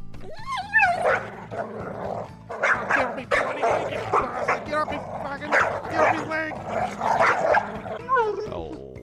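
A dog, Rover, barks and yips excitedly and almost nonstop for several seconds, fairly loud, with high whiny yelps mixed among the sharp barks.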